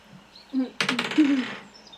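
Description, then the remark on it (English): Dice clatter across a hard tabletop in one quick roll, a bright rattle of rapid clicks lasting under a second, with a faint murmur of voices around it, as players roll a wisdom saving throw in a tabletop game. “Everybody roll a wisdom saving throw again.”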